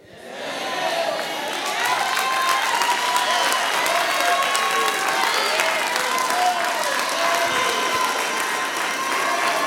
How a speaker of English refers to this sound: I'm looking to see who ain't clapping and who ain't saying nothing.